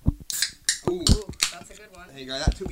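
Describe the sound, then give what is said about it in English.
Cans of LaCroix sparkling water, including peach pear and pamplemousse flavors, being opened, with a few short, bright bursts of fizzing hiss and light metallic clinks, mixed in with people talking. “So, yeah, I got peach pear, which is a winning combo, but I'll also say the sparkling water. Let's open these for our listeners so they can.”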